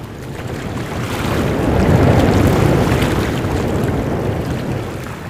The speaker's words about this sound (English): Strong winds tossed the wooden sailing ship as if it were a toy upon the Red Sea.